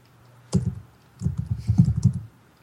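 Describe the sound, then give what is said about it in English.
Rapid typing on a computer keyboard, entering commands into a text-based game: a sharp initial clack, a brief pause, then a quick run of dense, uneven key presses with low thuds, moderately loud and with no voices. “You have to type in how to take a shit while the clock is ticking.”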